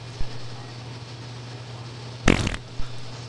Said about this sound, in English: There's not a good ripper in there. I skip. I mean, this is 10 hours of fart noises. I expect there to be some just like cannons going.